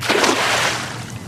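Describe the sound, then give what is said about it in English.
A cast net, flung like a frisbee off a man's shoulder, slaps down onto water as its weights pull it out, with a broad, hissing splash that sprays out and gradually fades over about a second, with no voices. “Then he flings it like a frisbee out onto the water, the weight pulling the rest of it off of his shoulder and out onto the water.”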